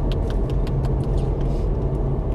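Steady low road rumble from inside a moving car, a constant deep drone with faint light ticks above it, with no talking.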